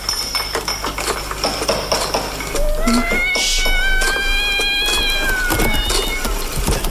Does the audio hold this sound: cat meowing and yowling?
yes